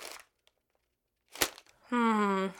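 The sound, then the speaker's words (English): A quick crinkle of paper, then a sharper rustling snap as the morning newspaper, brought with morning tea, is shaken open, followed by a short sustained vocal sound. “Sir, it's time for your morning tea. I have your paper.”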